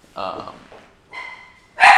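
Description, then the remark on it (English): Several sharp, harmonic dog barks and yips burst out in quick, uneven succession, loud, the last one the strongest, with a brief whine-like tone in between, as the dogs bark at the garbage collector arriving. “Told you the dogs were going to bark when UPS gets here.”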